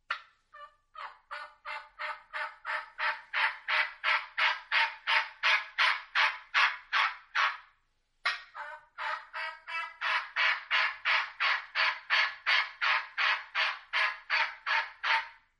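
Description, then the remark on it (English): A long, loud series of turkey hen assembly yelps, made by a person imitating the call used to gather a flock, comes in steady rhythmic runs of about twenty notes, broken by one short pause, clear with no talking. “doing an assembly yelp and gather little hens. And why don't you replicate what that sounds like?”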